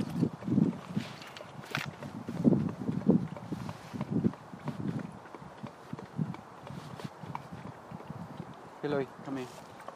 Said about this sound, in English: Horse is coming in our direction, which may mean that the horse is curious, but if somebody came along, And I'm also unsure about what would happen.